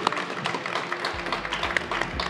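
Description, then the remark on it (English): Audience applause for a guest of a live show who leads a race's board: a steady, dense wash of many hands clapping at once, sustained at an even loudness for a couple of seconds with no voices over it. “Big round of applause for”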